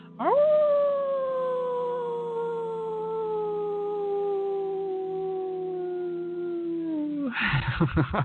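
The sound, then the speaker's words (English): A wolf lets out one long, steady howl that swoops up, then slowly sags in pitch for about seven seconds, loud, ending in a short rough burst of noise. “All of the noises, all the people expressing themselves, people putting their hands up in the air, the wolf still howling in the middle, you join in him once again, one more.”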